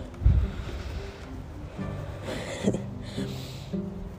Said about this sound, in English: It's very, very windy today. I hope the wind noise is not too distracting, and I hope that wherever you're walking it's a little calmer on the breeze front.